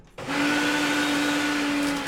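A blender making a smoothie switches on abruptly and runs at a steady, loud whir, with a constant low motor hum beneath a dense wash of grinding noise. No one speaks.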